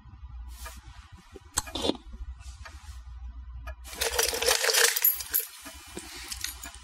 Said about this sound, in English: Okay, so yeah, the keys are literally all picked from a bowl, exactly the way that you hear there. It is a fucking gigantic punch bowl.